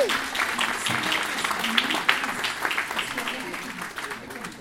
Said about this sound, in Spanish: Le damos un aplauso.